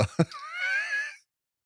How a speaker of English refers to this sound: Already adding spark to the episode. It's breathing. Breathing, that's not allowed.